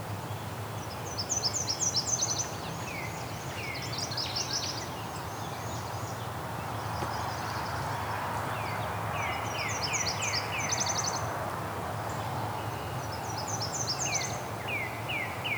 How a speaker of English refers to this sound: That was the Nashville warbler.